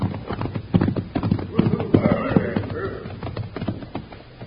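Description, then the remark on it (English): Several horses' hooves clip-clop steadily at a walking pace as riders approach, one horse a pinto, drawing nearer with a busy, uneven rhythm of hoof strikes, while faint voices murmur in the background. “Hey, here come some riders now. And I ain't seen that pinto horse before.”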